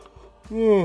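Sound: yawn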